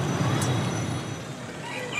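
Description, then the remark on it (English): Heavy trucks rumble through dense, traffic-jammed road traffic, a steady, loud low roar, with a brief hiss like an air brake early on. “New bridges and roads mean trucks, not boats, bring in goods. And shopping is about navigating traffic-jammed roads.”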